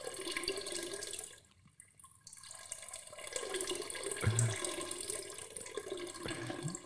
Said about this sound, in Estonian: See kõlab nagu ta vahepeal oleks põrandale kusnud ja siis tagasi poti poole. More pissing sounds.